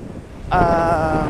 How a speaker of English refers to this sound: And now it's windy. Let's see, is this picking up? I don't know, it's probably fine. Or it's just windy and you feel a wind because it's windy and that's weather.